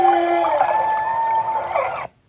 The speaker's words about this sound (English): But mostly, it doesn't sound like the songs you usually think of humpback whales as making, because these are chatting. These are social calls and discussions of things like bubble nets